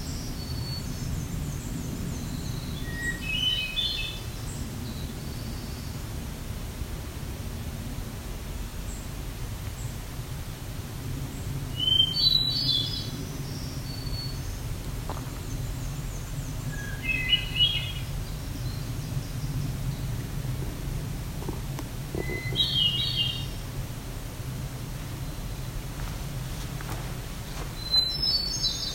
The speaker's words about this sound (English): The distance is a winter wren. There's the winter wren. Chickadee.